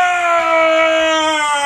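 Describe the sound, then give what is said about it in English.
A voice holds a loud, strained, monstrous scream for under two seconds, imitating a colossal creature; the harsh, buzzy tone stays steady and sinks slightly in pitch over low rumbling undertones. “I accidentally interrupted your Colossus scream.”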